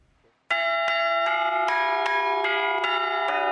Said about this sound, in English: On this Easter Sunday morning, bells are ringing for our Seth Doane.